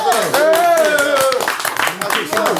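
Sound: people clapping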